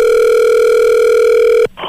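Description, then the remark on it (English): A loud, steady telephone dial tone hums alone for nearly two seconds, then cuts off abruptly with a soft click as a phone call to Santa connects. “Dan Mori was able to get Santa on the phone.”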